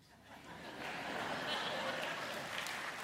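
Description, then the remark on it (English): A crowd breaks into applause that swells within the first second and holds steady as a dense, continuous wash of clapping, with some scattered laughter mixed in. “I don't know what y'all clapping for.”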